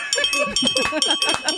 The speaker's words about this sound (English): It's a little embarrassing. We have a bell.